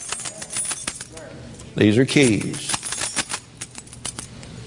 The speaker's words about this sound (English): These are keys. In heaven, you won't need any of them. Why do you have them now? To keep somebody from taking what you have.